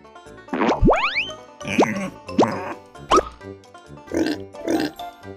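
A pig oinks in a quick series of about six short, close grunts and squeals, some sliding sharply upward in pitch, with no talking.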